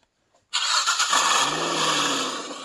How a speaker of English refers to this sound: nice engine rev you did there.